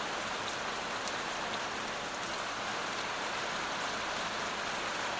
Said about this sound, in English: Here comes the rain again. I almost wonder if I should talk or if it let you listen to the rain. It's so great.